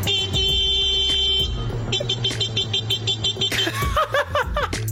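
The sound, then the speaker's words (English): A man mimics a car horn with his voice, holding a steady honking tone, then breaking into a rapid run of short beeping honks, loud amid background noise. “He is making the car sound.”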